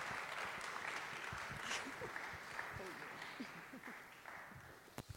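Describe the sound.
An audience claps steadily for several seconds for a guest who came up to share a story this morning, a dense crackle of many hands that holds level and then tapers slightly, with faint voices murmuring underneath.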